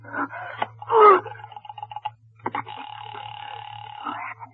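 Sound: telephone being dialed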